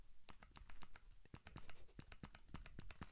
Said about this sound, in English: How do you like that? Keyboard noises.